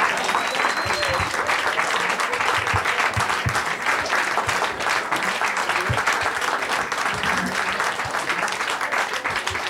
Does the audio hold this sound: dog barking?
no